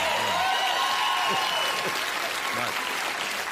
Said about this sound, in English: You're applauding me because I got that word out? Thank you very much. What a low bar we're working with tonight.